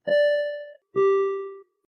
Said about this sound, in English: That bell was for the finish.